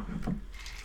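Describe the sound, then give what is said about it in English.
A brief, soft pour of a sand snake cocktail out of used ice onto crushed ice, with a faint low thud at first and then a quiet crackling, trickling patter that fades away. “So we're pouring out of the used ice, we're pouring onto crushed ice for this sand snake.”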